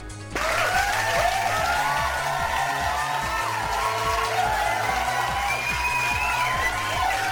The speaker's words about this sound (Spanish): Y qué bueno que fue homenajeado finalmente una gran obra como lo es Dororo. Un pinche aplauso.